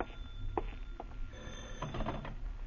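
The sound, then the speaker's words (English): A telephone bell rings at noon with a jangling, rattling trill that carries through the whole short stretch, slightly muffled, with no voices. “By noon, you still have no answer, and then the phone startles you, but you manage to answer.”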